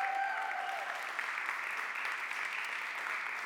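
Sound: loud audience applause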